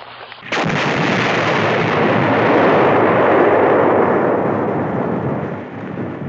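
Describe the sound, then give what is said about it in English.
A sudden loud explosion from plastic explosives bursts out, followed by a long, dense roar and rumble that slowly fades over several seconds. No one speaks. “I'm going to set some plastic explosives. You need to take cover.”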